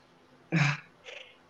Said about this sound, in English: I've got sinus, so I've got to blow my nose sometimes. Sorry.